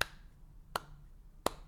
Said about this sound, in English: That's me giving him the slow clap.